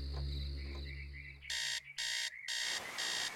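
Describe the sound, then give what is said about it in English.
A loud alarm clock goes off in the morning, starting partway through and sounding in four harsh, evenly spaced bursts after a low, steady hum fills the opening moments. “The next morning, I didn't even hear the alarm go off.”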